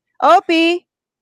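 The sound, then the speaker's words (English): A small dog, Opie, gives two quick, high-pitched barks in succession at a tiny spider crawling on the windowsill, fairly loud, with a short gap between them and silence afterward. “Barking against a tiny bit spider like this big.”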